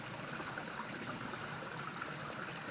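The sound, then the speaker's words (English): Steady babbling of a small, crystal-clear stream flowing over a rocky, pebbly bed, a continuous rush of water with fine gurgling detail and no voices. “these little trails through the bluebells, which are clearly, I think, where animals like maybe foxes and badgers and even deer are coming down to drink at the water's edge in some of the small pools that are dotted along the length of the stream.”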